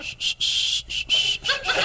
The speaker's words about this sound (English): I'm starting to notice you're not whistling at all. You're just blowing air.